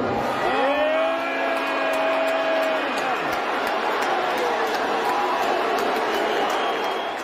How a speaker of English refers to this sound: thousands and thousands of people booing Elon